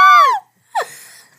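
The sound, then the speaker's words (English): Two loud, high-pitched screams from the hosts: a long wailing one that slides downward, a brief silence, then a second, rougher shriek that trails off. “If this makes it to the podcast, I'm going to scream.”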